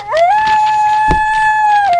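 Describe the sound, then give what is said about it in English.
A coyote lets out one long, loud howl that rises quickly, then holds a steady, clear pitch for about two seconds before dipping slightly at the end, with a brief low thump midway. “I heard that, Coyote.”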